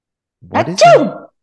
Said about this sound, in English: The suitcase sneezes.